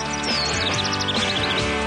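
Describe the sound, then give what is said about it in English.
Birds chirp in a radio studio in a quick, steady series of short, high tweets, layered over a continuous tonal background bed that hums beneath them throughout. “The birds are chirping in studio.”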